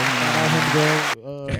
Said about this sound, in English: Put the claps experience. On. You ain't gonna put the claps on.